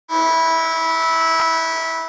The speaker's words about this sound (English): Yeah, put an alarm sound here or something.